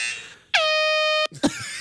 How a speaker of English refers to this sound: We've got our buzzers ready.